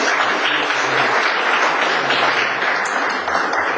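An audience at a Christian gathering applauds steadily to welcome a pastor forward to speak, a dense, continuous wash of many hands clapping at an even, fairly loud level throughout, with no voices standing out.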